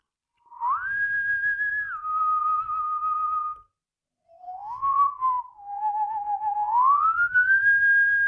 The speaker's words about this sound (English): Stop whistling and go to sleep.